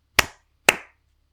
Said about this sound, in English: When the music stops, I'm going to clap a simple rhythm, like.